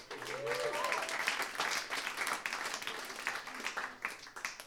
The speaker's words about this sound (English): How about a round of applause for Meltdown